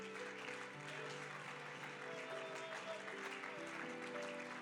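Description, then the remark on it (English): An audience breaks into sustained applause as a hand clap of praise to God, a dense, steady wash of many hands clapping for several seconds, with faint voices and some musical tones mixed underneath. “Come on, can you help me right now give God another hand clap of praise?”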